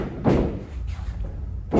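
A heavy body slams down onto a miked wrestling ring with a booming, resonant thud, followed by a lingering rumble and a second impact near the end; loud.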